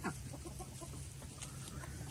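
roosters clucking

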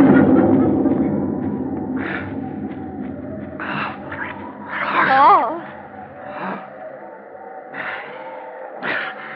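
thunderstorm

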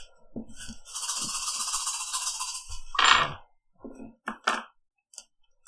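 dice rolling

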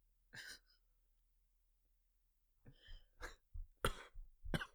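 cough

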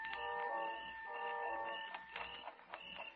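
alarm clock ticking

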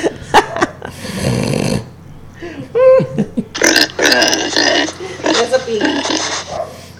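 dog sound effect

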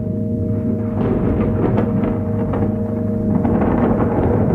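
distant rolling thunder

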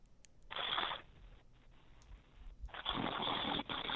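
snoring

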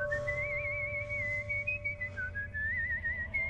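man whistling a tune

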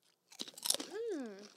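crunching

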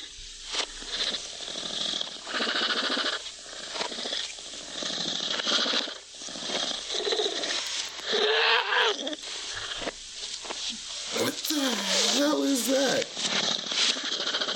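cat purring

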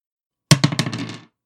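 dice being rolled

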